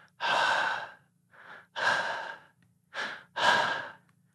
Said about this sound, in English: Something stepped from the doorway. Clink, clink, clink. The metal cuffs rattled softly. Hushed breath sounded right above Dylan's face.